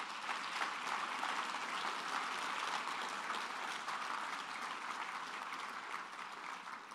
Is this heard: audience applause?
yes